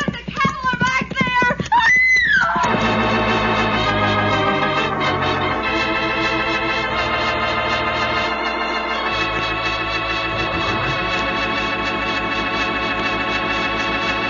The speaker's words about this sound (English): The sheep are stampeding.